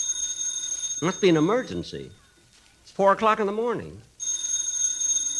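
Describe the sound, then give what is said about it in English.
A telephone rings at 4 o'clock in the morning with a steady, high electronic tone at the start. It cuts out while a man speaks, then resumes loudly once he stops. “The phone. That's a phone.”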